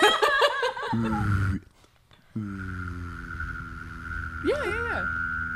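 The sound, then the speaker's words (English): A voice produces a steady, high whistled tone over a low buzzing throat drone at the same time, holding both for several seconds with a short pause, after chuckling vocal sounds at the start. “I think I'm just making a whistling sound, a weird sound in my mouth, and a sound in my throat.”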